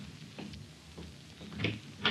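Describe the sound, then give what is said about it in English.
A door being opened for someone who has come to it, heard as a few soft clunks and rattles spread over two seconds, quiet, with a slightly firmer knock near the end and no talking. “There's somebody at the door. Oh, I'll answer it, Chief.”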